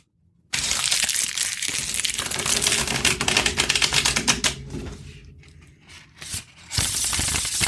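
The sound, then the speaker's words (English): Loud papery flicking of tarot cards being reverse shuffled, a dense rapid riffle running for about seven seconds with a brief softer lull near the end, no voices. “I like the reverse shuffle sound a lot.”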